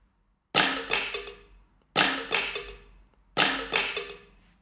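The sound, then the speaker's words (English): Three evenly spaced, loud layered clap hits, a clap sample played in Kontakt across about four keys for a fuller sound, each a sharp bright burst with a quick follow-up snap and a short ringing tail, with a metallic cowbell tone dragging underneath. No voices. “pushed about 4 keys to make the clap sound a little bit more full.”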